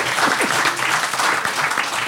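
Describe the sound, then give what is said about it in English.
An audience applauding to vote for Tucson and Fanshawe's case in a debate, a dense, steady wash of many hands clapping at once that holds at an even, fairly loud level for the full two seconds. “But if you think Tucson and Fanshawe made the best case, applaud now.”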